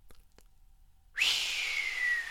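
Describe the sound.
A long, breathy inward whistle, breath drawn in through pursed lips, starts abruptly after a quiet pause with two faint clicks. It holds one airy, slightly falling pitch, fairly loud, with no talking.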